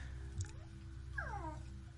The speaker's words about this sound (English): It's making very strange cat noises.